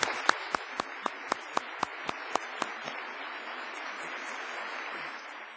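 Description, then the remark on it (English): Audience applause for honored guests at a Canadian Club of Toronto meeting for the Diverse City partner launch, with one crisp pair of hands clapping in a steady rhythm for the first few seconds before the softer crowd clapping carries on alone. “Ladies and gentlemen, please join me in applauding our very honorable guests.”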